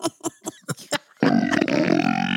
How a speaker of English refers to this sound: Excuse me. He's got big old burps.